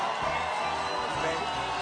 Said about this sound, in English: It's a happy crowd.